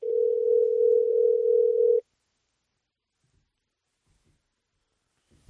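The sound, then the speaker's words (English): A steady telephone dial tone hums for about two seconds at an even, moderate level while a call is being placed, then cuts off into silence before a brief sharp click at the very end. “Good luck getting him on the phone.”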